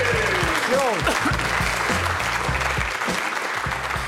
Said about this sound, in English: Just you clapping that one.